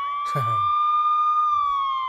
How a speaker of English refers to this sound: your sound effect is a siren.